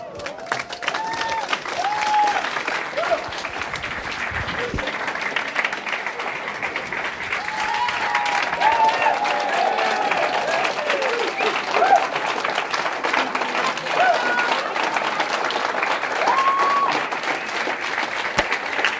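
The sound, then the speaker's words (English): A crowd applauds steadily for the full stretch, dense clapping with a few faint cheers and voices rising through the noise, loud and sustained without a break. “There's somebody here you haven't named that I think should have a big applause.”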